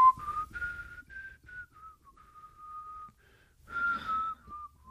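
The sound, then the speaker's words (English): A person whistles an idle, meandering tune, sustained tones sliding up and down with short pauses, sounding restless and impatient as if killing time. “The examiner probably wouldn't whistle in an irritating, impatient, la, la, la, using the whole minute.”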